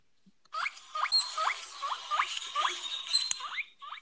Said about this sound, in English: It is a guinea pig. Oh my god. Oh, that's that one's actually like understandable.